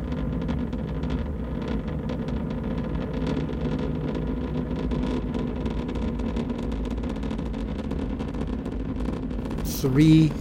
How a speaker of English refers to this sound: It burned, each of the engines burned 3,000 pounds a second. 3, 2, 1, 0. We have ignition and liftoff of Gemini.